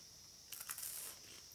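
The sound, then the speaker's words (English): A crisp, brittle crunch of a Ritz cracker being bitten, a quick cluster of sharp crackly snaps lasting about half a second, then fading to quiet hiss. No one speaks. “Wow, that was a great crunch.”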